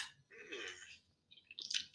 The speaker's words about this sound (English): No, sorry, as I take a sip of this delicious green Monster energy drink here. Yeah. To just, you know, shout out brand names, I guess. not the green sugary one. It's the, like, Ultra Paradise, no sugar, zero, blah, blah, blah.